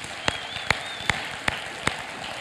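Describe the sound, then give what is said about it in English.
Applause from a crowd for mothers on Mother's Day, a dense crackle of clapping with five sharp claps standing out at a steady, even beat. No one speaks over it. “Can we give a round of applause to every single mother represented?”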